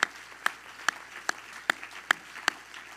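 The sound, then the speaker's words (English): A crowd claps their hands to the Lord in unison, a steady rhythmic beat of about eight sharp claps spaced evenly, with a faint wash of room noise between them and no talking. “Everybody clap your hands to the Lord today.”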